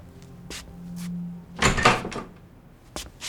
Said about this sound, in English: In the hallway, Nemiroff stands in front of his apartment and attempts to open the door.